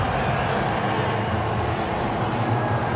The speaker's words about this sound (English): And it is a sea of blue and white here. That's a very happy crowd at the moment, which is fairly obvious.